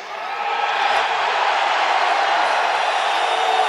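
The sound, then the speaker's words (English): A loud, steady roar of crowd noise fills the whole stretch, a dense wash of many voices blending together without pause, with no single speaker standing out. “God, look at that crowd.”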